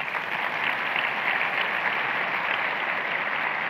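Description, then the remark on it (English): A crowd claps steadily for the women on the core teams of host parishes, a dense, even wash of many hands with no pauses or swells and no voices standing out above it. “Could you give these ladies a round of applause?”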